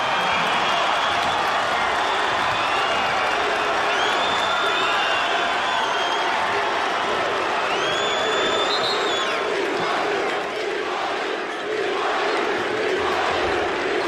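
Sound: basketball arena crowd cheering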